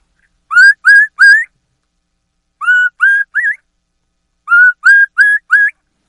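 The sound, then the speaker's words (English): High, thin whistled notes from a turkey mouth call held in the mouth imitate a young turkey, clear, in three quick bursts: three notes, then two, then four, with short pauses between. “So you get the high note like this with the call in your mouth. And then say PPP with that high note three times.”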